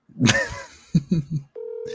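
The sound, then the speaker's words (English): A FaceTime call to a friend rings out with a steady electronic ringback tone that starts after a few short, muffled bursts, sounding clear, with no one picking up. “He's not gonna answer.”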